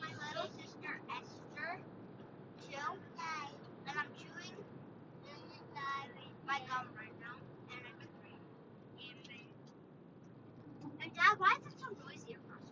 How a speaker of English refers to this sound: Because the car's driving fast on the asphalt. Cars? See, it's quieter now, right? Yeah, now that we're not across the golden gate.